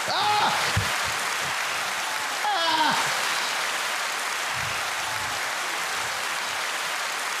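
A canned applause sound effect set off by a button in a studio: steady, dense clapping that runs unbroken for the whole stretch at an even level, with a couple of brief voices cutting in near the start.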